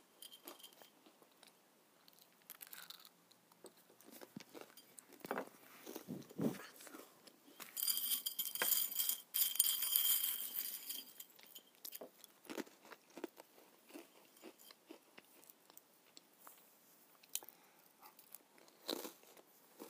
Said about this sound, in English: So we're going to be eating pretzels, right? Yeah, flat pretzels. Do you want to go first? Sure, yeah, I'll go first. Okay. So we're going to be ruffling on the plate. And we're going to be crunching, right? Yeah, crunching. Tasty.